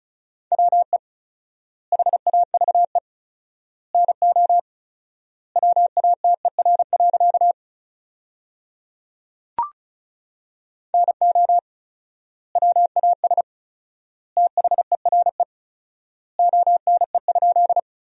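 Fast Morse code at 35 words per minute with fourfold word spacing, sending sentences built from the top 100 words as a single steady mid-pitched tone, rapid dots and dashes grouped into words with long pauses between them, plus one brief click partway through.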